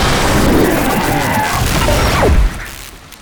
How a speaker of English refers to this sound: The lights of the village twinkled before us, and behind us the sound like a clap of thunder as the time machine imploded.